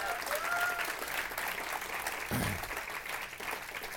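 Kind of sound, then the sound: crowd, audience applauding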